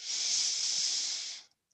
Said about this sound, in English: Good. Bow forward, breathe all the way out.